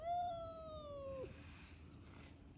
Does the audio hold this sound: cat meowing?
yes